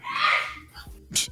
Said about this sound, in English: Bless you, whoever sneezed. That was my son from four rooms away.